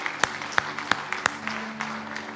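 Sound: audience applauding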